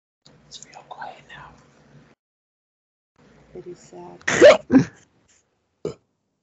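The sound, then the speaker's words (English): A sudden hiccup combined with a burp erupts, a loud throaty gulp followed by a second quick bodily sound and a short catch, after some quiet whispery murmuring. “A hiccup and a burp.”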